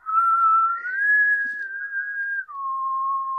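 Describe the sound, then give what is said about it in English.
A person whistles a short, self-made tune alone, a clear, steady tone that glides up, holds, then drops to a lower sustained note, fairly loud with a brief break near the end. “I just made the thing so I couldn't actually whistle it.”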